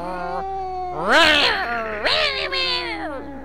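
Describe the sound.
A person imitates a cat, making two or three drawn-out, wavering meows in quick succession, loud, with a rising-then-falling yowl to each.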